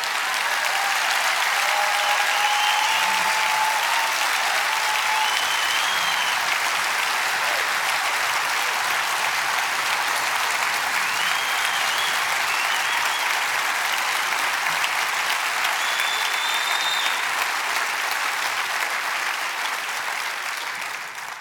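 A large audience claps steadily and loudly for about twenty seconds, a dense, sustained wash of applause with faint scattered whistles and cheers, tapering slightly at the end.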